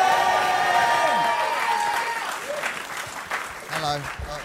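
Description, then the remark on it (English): A crowd applauds steadily as comedian Will Anderson is welcomed to the stage, with dense clapping and some cheering and whoops rising over it. Toward the end the clapping thins slightly as a few voices call out. “Could please get our round of applause started.”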